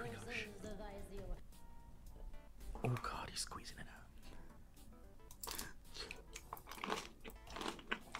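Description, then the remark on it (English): Wet chewing and crisp crunching of Galaxy Honey Jelly, a jelly-like food, in a whispered mukbang, with irregular bites and smacks throughout, while someone whispers softly over the eating. “He's chewing jelly? There's like stuff in the jelly.”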